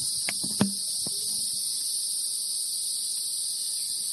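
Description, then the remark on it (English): A steady, high-pitched chorus of chirping insects outdoors by a pond drones on without a break, with a few soft clicks and taps early on and no voices. “Listen to those bugs.”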